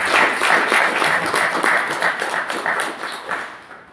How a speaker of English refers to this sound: This morning, I'd like to give special honor to our praise and worship team. I think you deserve a round of applause.